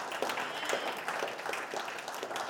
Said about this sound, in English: yeah, let's clap for that, right? That is amazing.